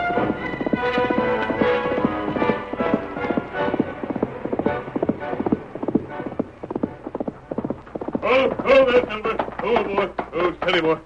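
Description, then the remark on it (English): The Lone Ranger's horse Silver: hooves clip-clop in a steady, brisk rhythm throughout, loud, with a shrill neigh rising over the hoofbeats near the end. “Called his horse Silver.”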